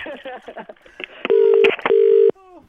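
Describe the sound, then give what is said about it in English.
Voices talk briefly, then a telephone number is dialed at FM 104 radio to ring back a caller who hung up: two long, loud, steady keypad tones in a row, followed by a short, fainter tonal burst. “She's hung up. I'll ring her back.”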